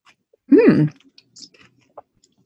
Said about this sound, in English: Yes, so I'm getting ready. I'm going to dive in then. Yeah, I'm in. So here's your warning, people. Chewing.